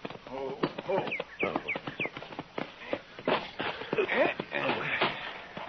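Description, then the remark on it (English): A horse's hooves clip-clop by a corral in a steady run of sharp knocks, with voices and chatter mixed in over the top. “He's got a new horse.”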